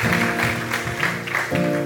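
An audience claps in a steady, dense wash of applause over sustained keyboard chords, loud and continuous throughout with no talking.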